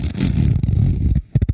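A zipper is pulled steadily, giving a loud, raspy ratcheting buzz for about a second, followed by a brief pause and a few sharp clicking tugs.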